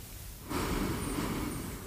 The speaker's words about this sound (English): Going back to our breathing, in,